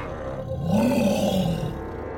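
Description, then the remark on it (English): A black wolf growls a couple of yards away among forest trees in the daytime: a deep, rumbling, single sustained snarl that swells in the middle and tapers off over about two seconds, with no voices. “I heard the growl just in time to turn around and see the black wolf standing a couple yards away.”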